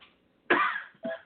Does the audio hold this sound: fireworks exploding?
no